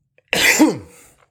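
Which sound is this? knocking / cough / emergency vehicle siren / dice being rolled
cough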